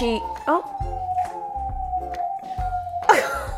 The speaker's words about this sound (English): It's like a really attention-seeking siren.